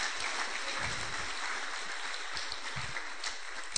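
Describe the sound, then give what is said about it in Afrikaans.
A crowd claps together in praise of the Lord in steady, continuous applause. It is a dense wash of many hands with no voices over it, holding at an even level throughout. “Loof die Here, kom ons geef die Here een klap daai in.”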